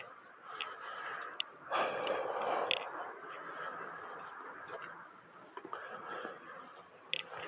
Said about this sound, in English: Boy, if you hear me breathing heavy, this is quite the hill.